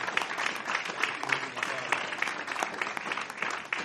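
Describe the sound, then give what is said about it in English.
An audience claps their hands as a hand clap of glory for the Lord Jesus, in sustained, dense applause, many overlapping claps forming a steady crackling wash with a few sharper individual claps standing out, moderately loud throughout. “Why don't you give the Lord Jesus a hand clap of glory?”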